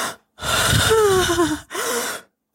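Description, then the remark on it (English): A voice imitates deep, heavy breathing: one long, raspy, slightly voiced inhale followed by a shorter breathy exhale, fairly loud, with no speech. “So I don't know if this works, but I heard deep breathing could work too.”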